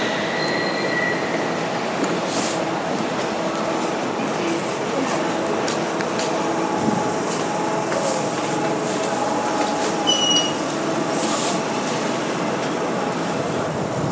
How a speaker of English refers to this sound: So here we are at Canary Wharf, and it's a major station on the DLR, the Docklands Light Railway. And it's rather interesting because there's 3 tracks but 6 platforms.